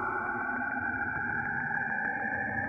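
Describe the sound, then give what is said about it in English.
An eerie planetary space recording: a continuous, warbling high-pitched wail like screaming, layered over dense, hissy rumble, steady and loud throughout with no voices. “It sounds like people screaming.”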